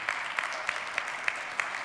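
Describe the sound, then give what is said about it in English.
An audience at Gospel Hope Church claps during worship in a steady wash of applause, with a few sharper claps standing out at an even, regular beat. No one speaks. “Were there some people trying to applaud?”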